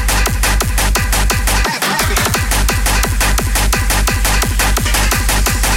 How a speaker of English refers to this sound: we have all my favourite hardcore tracks from the past month and some classics thrown in there as well.